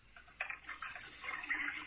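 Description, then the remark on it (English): Clorox bleach being poured down a drain, a steady, hissing trickle with small splashy gurgles that continues for the full two seconds, fairly quiet, with no talking. “I'm pouring Clorox down the drain.”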